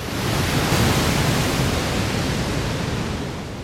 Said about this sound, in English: Then Yellowstone Falls. Below the lake, the river drops through a series of waterfalls down into Yellowstone Canyon.